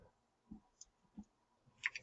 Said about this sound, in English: You can't talk when you're typing. I know. Hang on.